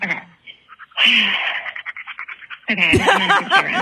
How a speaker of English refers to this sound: It's her panting.